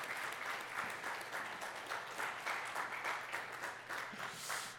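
A crowd applauds steadily, many hands clapping in a dense, even wash of bright patter that holds for several seconds without letting up, with no voices over it.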